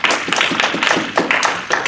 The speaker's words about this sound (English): Let's all give him a hand clap.